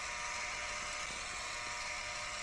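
A building's door entry buzzer, buzzing a visitor in at the side door, drones in one continuous, harsh electric buzz, holding steady and unbroken for a couple of seconds with no voices over it.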